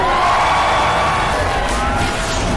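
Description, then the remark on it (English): A large crowd at New York Comic Con cheers and shouts loudly and steadily to welcome a pre-show host, a dense roar of many voices with scattered whoops rising above it, sustained throughout without a break. “New York Comic Con, please make some noise and welcome the one and only”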